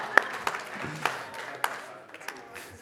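An audience applauds: scattered, uneven claps with a few sharper hand-claps standing out over a soft crowd wash, fairly quiet and thinning toward the end.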